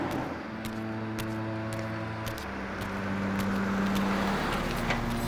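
A car engine hums steadily and draws closer on 12th Street on a cold, dark night, the low tone shifting as the vehicle rolls up and slows, with faint crackling and clicks over the rumble.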